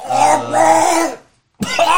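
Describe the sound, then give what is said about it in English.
Someone acts out a character's fit of coughing: a drawn-out, raspy, strained vocal hack, a brief silence, then another abrupt harsh cough, loud. “So you see as you guys get back to the boat and are settling in, he starts coughing.”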